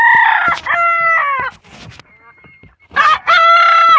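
A rooster crows loudly, two long strained calls separated by a quieter stretch of scattered clucks and rustling. No one speaks.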